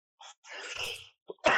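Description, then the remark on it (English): A raspy throat-clearing cough, a short burst followed by a longer rough, breathy rasp, then a sharper hack at the end, with no talking. “You got it right now? As you cough.”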